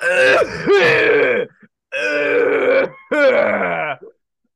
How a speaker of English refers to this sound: I got you with the Foley here. … starts coughing really bad.